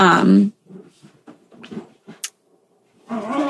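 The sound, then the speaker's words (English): Dogs bark loudly, one sharp burst at the start and another near the end, with quieter scattered noises in between. “Oh my gosh, these dogs are blowing up my spot right now.”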